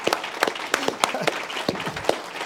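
A crowd claps in applause as a 'clap offering' to a brother, a dense wash of handclaps with sharper individual claps popping out at an irregular, roughly steady beat, fairly loud throughout with faint voices mixed in.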